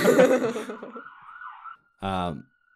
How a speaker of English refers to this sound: Holy shit, this is going on for a long time. Well, you're the one who fucking put me here, dude. Like, no, I mean the siren, not the story.